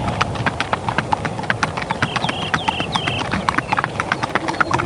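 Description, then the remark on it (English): Wild Icelandic horses running in Iceland, their hooves clip-clopping in a quick, steady rhythm of many sharp strikes over a continuous rumble, with a few brief high tonal calls in the middle. “So this is what they sound like when they're running.”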